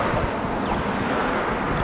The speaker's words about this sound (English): Back in the Healing Garden, a block away from the freeway, the sound of cars and big rigs pervade the air.